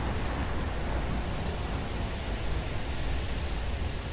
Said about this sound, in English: And all of a sudden, the sky grows dark. And the wind starts to come. And the storm hits. The storm hits. There it is.